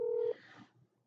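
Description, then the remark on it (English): A short, steady electronic telephone dialing tone sounds clearly for a split second as a call is placed, then cuts off into a faint, brief rustle that quickly fades to quiet. “Let's see if we can get Nimanya here on the phone”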